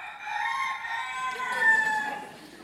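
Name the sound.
rooster crowing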